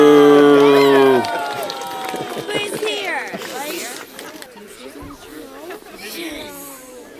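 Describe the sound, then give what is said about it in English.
A crowd lets out a loud, drawn-out boo lasting about a second, reacting to the Canadian groundhog Sam's prediction of an early spring, then breaks into a murmur of mixed voices and chatter that continues at a lower level. “Sam, one of the Canadian groundhogs who was predicting an early spring, but this is the crowd reacting to Sam's prediction.”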